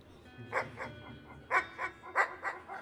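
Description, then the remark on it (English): A dog lying on the floor among tables, its head propped on its owner's shoe, gives soft, muffled barks in quick pairs, each second bark following close behind like a hiccup, repeated about three times, fairly quiet with no one talking. “Rather than the staccato finish dogs normally favor, this was a soft hiccup of a bark, or two barks rolled into one, as if the dog was trying to justify to itself a recent episode where it had been necessary to bark more aggressively.”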